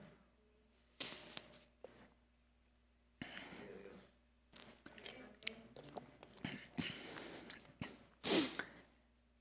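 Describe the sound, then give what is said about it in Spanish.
Someone drinks water: a series of sips, gulps and swallows broken up by breaths through the nose, ending with a louder, sharper burst. “Tengo que tomar agua.”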